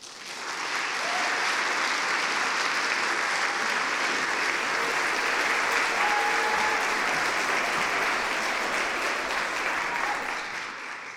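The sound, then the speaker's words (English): An audience applauds steadily for about eleven seconds as the first speaker of a storytelling event comes up to the stage, a dense, even wash of clapping that holds its loudness throughout before easing slightly at the end. “Would you help get us started in good spirit by applauding our first speaker as she comes up to the stage?”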